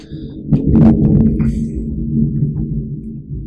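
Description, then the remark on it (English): Thunder on a stormy night in Chicago: a deep, rolling rumble swells loudly after a brief quiet start, with a few sharp crackling bursts early on, then keeps grumbling steadily to the end with no voices. “As listeners may hear, we are recording this on a stormy night in Chicago.”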